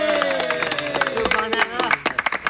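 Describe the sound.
A group cheers with overlapping high voices while scattered hand claps ring out; the clapping grows into sharp, separate bursts toward the end as the cheering fades.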